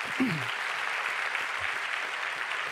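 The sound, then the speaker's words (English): An audience in a church claps steadily together for the youth teachers, a dense, even wash of applause that holds at the same level for the few seconds heard, with a brief low voice near the start. “if you would give them a hand.”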